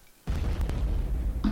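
A loud explosion sound effect bursts in suddenly after a brief quiet moment, followed by a sustained, heavy low-end rumble with crackling debris that continues through the end.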